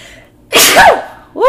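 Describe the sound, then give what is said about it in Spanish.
A loud sneeze bursts out with a sharp explosive rush from a person who is cooking, followed a moment later by the start of a second vocal sound; no other talking. “Disculpen que voy a estornudar, van a escuchar mi estornudo.”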